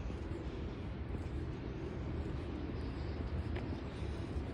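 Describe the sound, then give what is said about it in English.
A steady, low airplane roar fills the whole stretch, a broad rumbling drone that holds an even level without rising or fading, with no one speaking. “And you can slightly hear the sounds of birds, and now a plane.”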